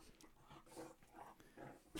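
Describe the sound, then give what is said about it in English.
A dog whimpers, letting out several short, high whines in uneven bursts with brief pauses between, ending on a sharper, louder whine. “What is going on with your fucking dog?”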